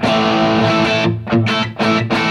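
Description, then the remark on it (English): A loud, overdriven electric guitar played through the Marshall-inspired channel 2 of an amp, selected as the third preset, with crunchy sustained distorted chords that briefly choke off and restrike in a few rhythmic stabs. “Okay, so that's obviously the sort of Marshall-inspired channel.”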